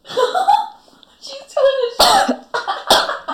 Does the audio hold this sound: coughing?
yes